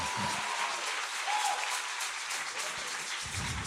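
An audience claps steadily, a dense, loud wash of many hands applauding throughout, with no clear pause or break in the clapping.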